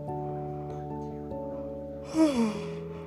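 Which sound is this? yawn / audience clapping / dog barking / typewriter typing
yawn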